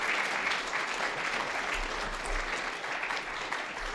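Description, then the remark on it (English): A church audience applauds steadily as a woman comes down to speak, a dense wash of clapping that holds at an even level for the whole few seconds, with no one speaking over it. “Can we give her a round of applause as she comes down?”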